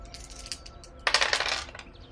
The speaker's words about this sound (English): Yeah, roll to help. Which dice are going to be nice to me today? I'm going to try you and you.